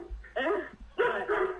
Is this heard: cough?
no